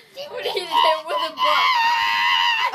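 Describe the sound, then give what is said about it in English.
A shrill, sustained high-pitched scream from a person imitating a dolphin's squeal, wavering in pitch and held for about two seconds, loud. “That was a weird scream. Shut them up. I channel my inner dolphin.”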